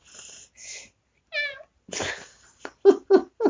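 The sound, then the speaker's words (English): A cat gives a single short, nasal meow, surrounded by breathy hisses and a few quick snuffling, sneeze-like bursts. “I love your kitty.”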